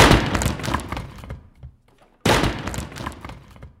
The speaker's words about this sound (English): Devil take it. How I am smashing up your furniture.